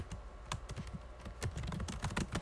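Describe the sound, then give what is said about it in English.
Rapid, uneven clicking of keys on a computer keyboard, fairly clear, with a steady stream of short taps and no voices, as someone searches for something. “You hearing me typing?”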